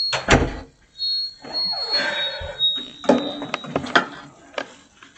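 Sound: door opening and closing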